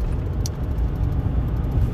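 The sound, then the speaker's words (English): A steady low rumble of road traffic going past in late winter, with engine and tire noise filling the low end and a brief high hiss partway through. “Sorry, traffic.”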